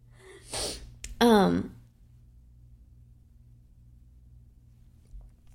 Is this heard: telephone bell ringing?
no